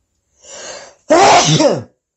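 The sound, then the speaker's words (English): A single loud sneeze: a breathy, hissing inhale builds for a moment, then a sharp explosive burst that trails off quickly. No talking. “I'm going to sneeze.”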